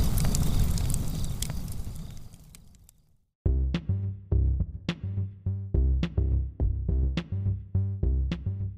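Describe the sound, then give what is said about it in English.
A campfire crackles and hisses with dense popping for about three seconds, fading out before a steady beat of rhythmic music kicks in and carries on to the end. “Campfire.”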